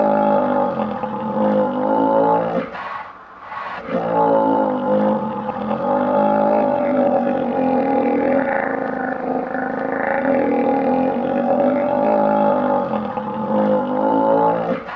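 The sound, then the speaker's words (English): Male alligators at Gatorland, during an experiment, bellowing in a low B flat: a deep, low-pitched chorus of loud rumbling roars that overlap and drone almost continuously, with one brief lull early on. No one speaks. “And we set up this experiment in the curator at Gatorland was sort of amused that we were going to try this, and it took us a while, but when we figured it out, this whole place exploded with alligators, male alligators, bellowing in this low B flat.”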